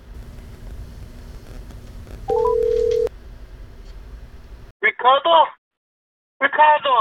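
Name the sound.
telephone dialing and ringing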